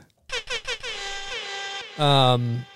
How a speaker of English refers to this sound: Let's give your grandmother a little air horn. Yeah, let's give her an air horn.